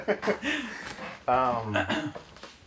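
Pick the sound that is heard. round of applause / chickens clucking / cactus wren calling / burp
burp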